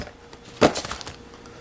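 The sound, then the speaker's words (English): A sudden crackly rip as a plastic lid is peeled back from the paper packaging of a noodle meal, followed by a short run of softer crinkling pops that quickly fade. No one speaks. “like I said, this is paper, and then the top is plastic. You just peel it off a little bit, and you're ready to go.”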